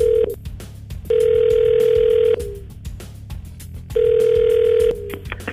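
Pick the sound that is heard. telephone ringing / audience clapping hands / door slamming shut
telephone ringing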